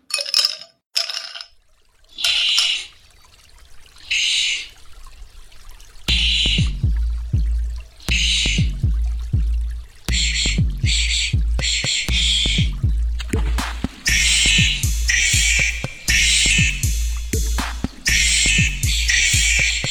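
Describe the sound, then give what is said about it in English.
A quirky novelty song about a scary wombat, played during a break, opens with sparse, bright chirping bursts, then settles into a loud, steady groove with thumping bass and repeated high accents, playing on its own. “Here to entertain you in the meantime is our scary wombat song.”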